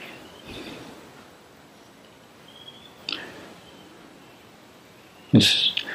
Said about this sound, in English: the temperature is just right, not too hot, not too cold, cooling breeze, natural sounds of birds.